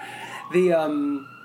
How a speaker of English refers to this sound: There's just sirens everywhere.